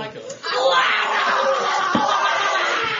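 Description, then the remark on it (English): A group of people in a pool at night yelling together in a loud, sustained burst of overlapping voices that fills the space, rising sharply after a brief quieter moment and continuing steadily throughout. “Yeah, we've been yelling it all night in the pool.”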